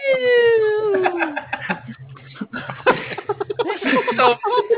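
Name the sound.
alarm siren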